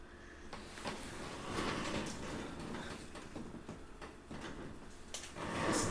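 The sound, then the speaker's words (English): Muffled outdoor movement with a few dull thumps and scrapes, like car doors opening and closing, as neighbors get into their car outside the house and leave, over a steady low rumble that swells slightly toward the end. “Sounds like they're just getting in their car and leaving.”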